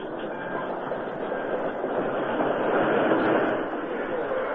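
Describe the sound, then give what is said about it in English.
A train from Kansas rolls into a town's railroad station and stops, a steady, dense rumble and clatter of rail cars that swells slightly near the end. It is fairly loud, with no clear talking over it. “Todd Lyons waited at the town's railroad station as the train from Kansas stopped there”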